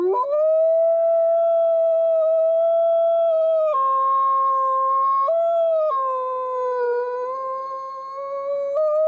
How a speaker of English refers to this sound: And when I put her body in the ground, like the moment her body hit the bottom of her grave, snow started dumping and Rocco started howling.